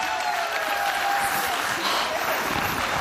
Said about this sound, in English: Everyone give these guys a round of applause.